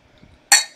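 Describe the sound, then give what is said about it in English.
A single bright clink of glasses touching in a toast to health, prosperity and fulfillment, a sharp ringing chime that fades over a fraction of a second after a moment of near silence. “Santos says, toast to health, prosperity for fulfillment.”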